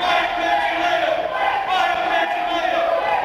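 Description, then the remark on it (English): A large political debate audience shouts and cheers loudly and continuously, a dense roar of many voices that fills the space without pause for several seconds. “Please be respectful. Please be respectful in the crowd.”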